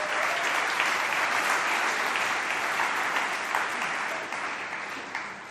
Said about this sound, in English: Guys, we've fed 7,000 people in our kitchens this week. Isn't that crazy? Yeah, little round of applause for our kitchen teams.